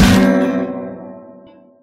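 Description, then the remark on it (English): An acoustic guitar is flung to the floor and stomped on with boots, destroying it: one loud impact, its strings and wooden body ringing out in a discordant jangle that slowly fades away. No one speaks. “The song climaxed with disdainful, discordant strumming before he flung the acoustic guitar to the floor and stomped on it with his goth boots, destroying it.”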